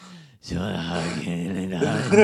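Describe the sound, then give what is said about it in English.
A person exaggeratedly imitates heavy, labored breathing, a loud, raspy, groaning exhale sustained for a couple of seconds right after a brief vocal sound. “I mean, it's not their fault they might have a cold and a really bad breathing problem as they're going to...”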